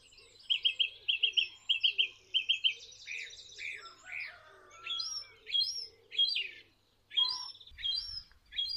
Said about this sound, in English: One minute it sounds like a blackbird, the next minute it even sounded like a herring gull then. It's incredibly versatile. So it's a song thrush, it's just the most incredible singer. Can't see it at all.